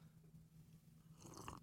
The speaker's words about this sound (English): Took a sip.